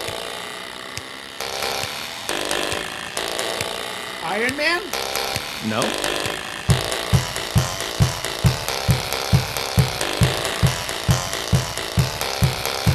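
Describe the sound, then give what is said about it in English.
A song is played on springs arranged on a keyboard, each spring making a different sound: a twangy, metallic tune with rising zinging sweeps before settling into a steady, fast chugging rhythm of struck notes. A voice speaks briefly over it. “she arranged a few different of those springs on a keyboard. And I guess they played different sounds. And she made a song.”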